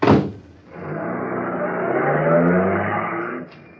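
A sharp thump, then a car engine starts revving, its pitch climbing steadily as it pulls away for about three seconds before cutting off abruptly.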